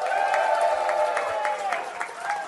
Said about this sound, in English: So can you please give them all a massive cheer? Can you please welcome to the stage?